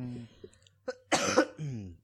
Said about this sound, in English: I think I've been laughing too hard because now I'm coughing. My throat hurts, which is a clear sign that I've been talking for too long.